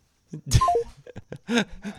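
A phone call ends as the phone is hung up with a sharp click followed by three quick descending electronic beeps, clear, then a short drawn-out vocal groan.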